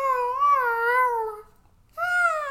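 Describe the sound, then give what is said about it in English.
A voice imitates a basenji's yodel, the noise this dog breed makes instead of barking because its voice box is shaped differently: a long, wavering, high-pitched warble that slowly slides downward, a brief pause, then a second warbling cry starts up. “They call it yodeling.”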